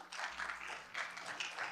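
A crowd applauds a guest in a steady, dense wash of clapping that holds for a couple of seconds, fairly soft, with no voices over it.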